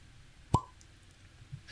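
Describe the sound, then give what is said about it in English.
A single sharp cork pop from a bottle of Patagonia Chardonnay, with a brief hollow ring, followed by over a second of quiet with only faint low rustling as the wine is poured. No voices. “We got a pop and a pour, yeah.”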